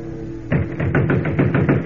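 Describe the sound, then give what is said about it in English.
Rapid, heavy pounding on the door of Nino Benelli's art shop near the waterfront at 2 o'clock in the morning, a steady run of about ten loud thuds, starting abruptly after a brief low hum and continuing to the end. “Kent, we've been pounding that door for 5 minutes and no one answers.”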